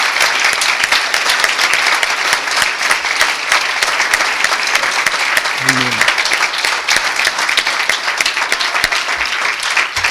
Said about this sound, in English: Come on, men. Amen. Let's clap our hands and honor them today.